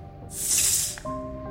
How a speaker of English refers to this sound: I had only just set my work aside for the evening when a note slipped beneath my door.